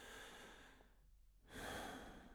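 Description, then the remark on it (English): Raspy breathing with no talking: a long, noisy exhale fades into a short pause, then a louder, harsher breath follows, like a person's labored final breath. “The sound of the last breath”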